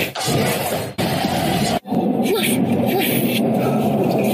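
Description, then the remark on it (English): A person imitates a dog barking with loud, gruff woofs delivered in a few bursts separated by brief pauses, with speech-like vocal tone throughout. “Get a little bass in that voice. Woof, woof.”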